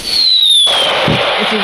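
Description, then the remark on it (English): A firework whistles with a thin, slowly falling tone, then bursts into a loud, sustained crackling explosion that fills the rest of the moment. “I have for you fireworks!”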